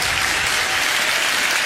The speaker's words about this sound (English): We got a clapping here.